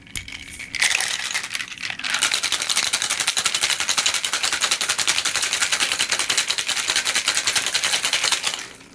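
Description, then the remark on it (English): A cocktail shaker full of ice is shaken hard and fast, making a dense, steady, loud rattling clatter for several seconds, with no one speaking. “All right, so give it a shake and then pour it in.”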